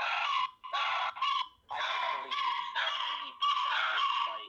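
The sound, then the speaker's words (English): Dogs barking in a rapid string of high, sharp yaps that run almost together, loud, with no talking. “There are your dogs again.”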